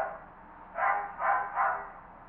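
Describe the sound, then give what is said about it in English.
A dog barks three times in quick succession, muffled, in the background over a faint steady hum with no one talking. “And you hear a dog barking in the background.”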